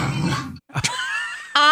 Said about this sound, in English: So this clip has racked up to about 6 million views after this guy posted his dog talking to him. A big, cute, cuddly dog. He talks to her, and she talks back.